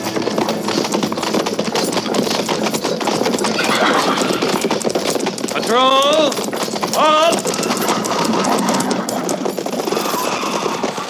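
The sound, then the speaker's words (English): Horses of a cavalry patrol clip-clop steadily, several animals moving together, with a couple of sharp horse whinnies rising through the middle and indistinct voices underneath. “And see that their horses are babied right this time.”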